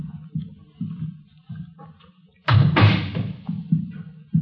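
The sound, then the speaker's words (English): A door is opened and shut, with a sharp rattling clunk of the latch and a heavy thud. Softer, regular thumps, like footsteps, come before and after. No one speaks. “I'll get the door.”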